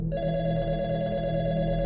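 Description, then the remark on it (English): A telephone rings loudly, one continuous electronic trill that starts almost immediately and holds steady throughout, with no voices. “Among numerous phone calls received, one caller in particular reached out to Crime Stoppers and claimed to have seen that vehicle at the Girl Guide Hut on Juliet Street on the night in question, about 25 minutes before Shandee was attacked.”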